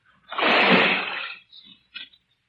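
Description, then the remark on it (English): A big splash as a person drops down into shallow water only waist-deep, a second of churning spray, then two short smaller sloshes as the water settles. No voices. “You drop down there first. I don't know how deep the water is.”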